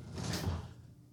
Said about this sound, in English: James goes and closes the studio door.